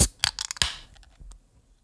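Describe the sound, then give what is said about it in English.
Beer cans crack open to try the beers, with a few sharp metallic snaps in quick succession, followed by a soft, fading fizz. There are no voices, just the tab clicks and hiss. “But anyways, let's crack these open.”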